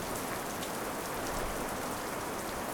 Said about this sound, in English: It's raining here now, so you can just see bits of rain on the glass. It's pretty, yeah, it's really pretty.